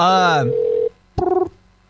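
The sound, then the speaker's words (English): A steady telephone dial tone hums for under a second, then after a brief pause a short, clear dialing beep sounds, fairly loud with no talking, as someone dials a phone number to check whether it still works. “I'm going to check to see if this phone number still works.”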